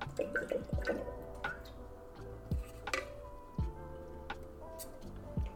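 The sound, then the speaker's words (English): Someone takes a sip of water: a few soft, wet gulping swallows spaced a second or so apart, quiet and with no talking. “Before we jump into movie and TV, I'm going to get some of this water because I am talking.”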